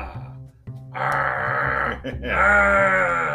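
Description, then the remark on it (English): A person imitates a monster roar with a loud, rough, drawn-out vocal growl that breaks briefly in the middle, then swells again, slightly bleating in tone. “Yeah, roar. You're like Godzilla right after he gets out of Tokyo Harbor.”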